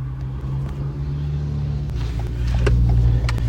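A steady low engine drone and road rumble from inside a moving car on the way to a railway line near Warrington, with faint ticks and clicks over the top, swelling slightly louder near the end; nobody speaks.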